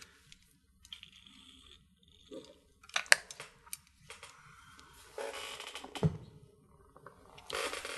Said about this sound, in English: Excuse me as I have a briefly have a drink of water.